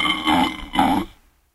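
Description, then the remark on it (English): Two loud, rasping burps from a man, played back in quick succession from a musical birthday greeting card, slightly tinny, then cutting off into silence. “What was that, some guy burping?”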